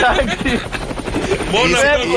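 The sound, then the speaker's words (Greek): Loud helicopter rotor thumping with a steady churning whir, layered under excited overlapping voices talking throughout the short stretch. “έτσι και δεν φύγει ο Αναγνωστόπουλος σήμερα, να φορέσει ελικόπτερο να φύγει”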